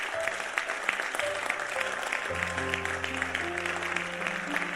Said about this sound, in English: Tonight, put your hands together and stand to your feet. Oh, your clapping is not... Yes.